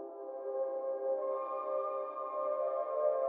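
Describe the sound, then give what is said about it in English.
A sustained synth pad, a plain sound given a large amount of reverb and delay for a track, holds steady harmonic tones, swelling slightly brighter after a second and washed in lush reverb and echoing delay, playing alone at a moderate, even level. “And there it is, quite a boring sound transformed into a nice bath time pad.”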